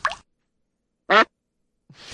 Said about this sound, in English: Here comes the storm. It's coming here. Couple more here. I guess these are splashes.